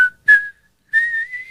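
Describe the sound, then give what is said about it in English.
A person whistles a short tune, the melody of a song's verse, a few clear pitched phrases with brief gaps between them, the final note held and sliding slightly upward. “The famous song of your has a whistle verse.”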